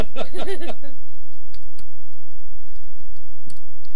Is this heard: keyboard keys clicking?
yes